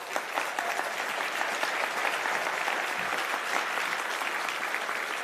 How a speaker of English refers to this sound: Let these guys clap for you. Come on.